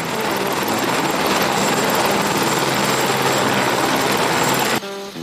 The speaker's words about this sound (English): As we've climbed up through the mountains, there's been a consistent stream of helicopters running up and down the Khumbu Valley. Many of these are short sightseeing trips, or as often the case, expensive evacuations.